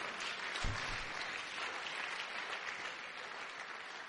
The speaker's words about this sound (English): Can you give a clap offering unto the Lord?